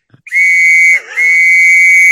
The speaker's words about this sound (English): Oh, he's got the whistle. He's got the whistle. Here we go. Choo choo.